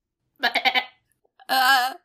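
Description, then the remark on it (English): A voice imitates a spotted goat bleating at a ritual: two loud bleats, the first a quick quavering stutter, the second a longer steady one after a short pause. “Wait, did you bring a spotted goat to the ritual?”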